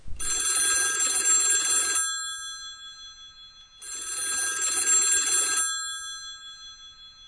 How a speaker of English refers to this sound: Here we go. Now to wait for the phone to ring.